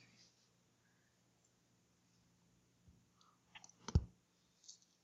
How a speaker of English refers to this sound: Hey. Love rolling a lot of dice. Shake, shake, shake. 1, 2, 3, 4. Shake. 4 successes on that.